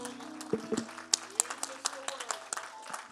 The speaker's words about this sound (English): Why don't we give the Lord another round of applause right now? He's worthy.